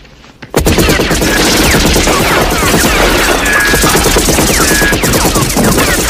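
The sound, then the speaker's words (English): Dense, continuous movie gunfire erupts after a brief quiet start as a hitman character comes out of his shed full of guns, guns blazing. Rapid overlapping shots and automatic bursts blaze loudly for several seconds, like a frantic action-scene shootout. “He comes out, guns blazing, ready to go.”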